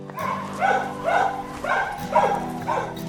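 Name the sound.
dog barking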